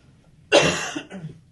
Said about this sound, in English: Of course, I have to cough when I'm asking a question.